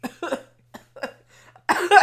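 A run of short, raspy coughs in irregular bursts, fairly loud, building to a heavier, harsher fit of coughing at the end over a faint steady hum.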